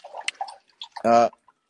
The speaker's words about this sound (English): Whoever is the previous caller who is making some water noises, or if you were previously speaking to us, you're still on the line. So quit the app and come back in.